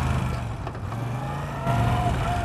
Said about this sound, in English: God, I love a motorcycle, though. Talk about avoiding the traffic, man. Fuck, see? Right in here, gonna slide right in.